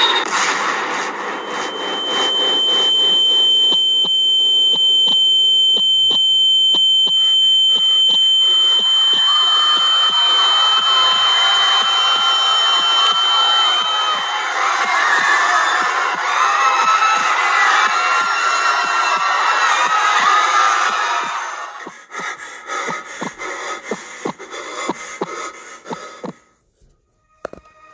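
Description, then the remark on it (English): A loud, agitated crowd shouts and cries out continuously over a steady high alarm-like tone in a clip of the second plane hitting, the commotion dense for about twenty seconds before breaking off into scattered, quieter noises. “I found that last clip of the second plane hitting.”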